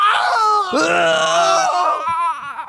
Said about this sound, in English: Can we hear the stomach cramp real quick before we go back to the phones here? Our spooky sound effects put together by the production staff.